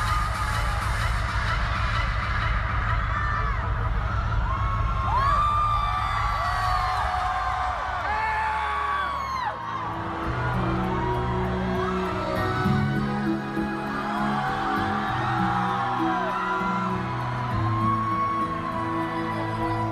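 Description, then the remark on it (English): A large concert crowd in Las Vegas screams and cheers loudly for the whole stretch, with many overlapping high whoops and shrieks rising and falling above a dense, roaring wash of noise and a low rumble underneath. “You want to see these guys work together? Somebody scream!”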